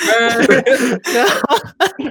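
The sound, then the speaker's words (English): Loud coughing and throat-clearing blend with strained, groaning vocal sounds, arriving in several rough bursts over about two seconds with only brief pauses between them. “Oh, I'm coughing up blood.”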